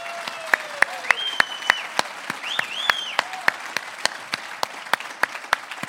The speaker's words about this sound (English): Well, first of all, I would like us to honor Pastor Neil. Why don't you help me to just clap as a recognition how much we love him? He's watching right now.